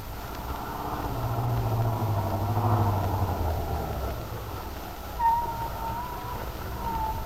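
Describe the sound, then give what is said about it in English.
A car drives steadily into Wakefield at daybreak with a low, droning engine rumble that swells and eases slightly, joined near the end by a few brief high squeaks. No one speaks. “she got into the car, drove into Wakefield to the auto court where Bill lived”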